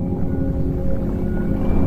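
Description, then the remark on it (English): A deep, resonant whale call moans continuously, its low tones sustained and layered with faint higher harmonics over a steady underwater rumble. “As I stood at the bottom of the sea, the whale approached me.”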